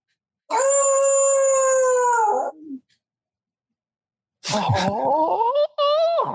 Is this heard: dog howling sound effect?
yes